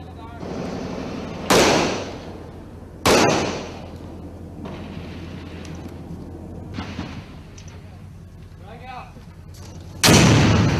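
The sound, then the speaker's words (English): Three loud, booming blasts ring out at uneven intervals, each with a sharp crack and a rolling decay, over a steady low rumble with faint indistinct voices in the background. “And imagine that these sounds I'm getting ready to play are muffled by being underground. But they sound like what the people say they're hearing. Explosions and then some gunshots.”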